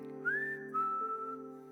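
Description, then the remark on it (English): A person whistles two long, clear notes, the first higher and gliding slightly, the second lower and held, over a steady low background hum, whistling so that children can find him in a game of hide-and-seek. “You got to become very adept at following the whistle, right?”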